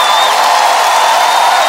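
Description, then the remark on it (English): An audience at Lakewood shouts and cheers in a loud, steady roar of many voices blended together, holding at the same intensity without a break for the whole moment. “They're always shouting about something.”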